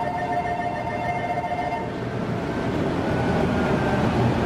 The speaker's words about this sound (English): The steel plant floor is hot, it's loud, and constantly in motion. I think it's exciting.